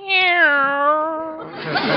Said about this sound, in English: Meow. There you are.